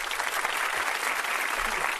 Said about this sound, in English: I gotta demand more from my people. All right. I told you what the hell I wanted. For nothing. All right? I want those for nothing now. We need more applause.